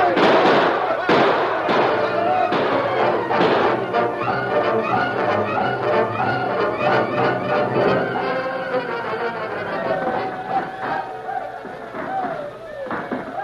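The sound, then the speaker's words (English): Sharp gunshots crack out in an irregular volley, densest in the first few seconds, with shouting voices and a busy background of music mixed underneath. “You're running short of ammunition? Sort of. Hold your fire until they charge.”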